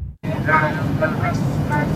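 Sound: airplane cabin noise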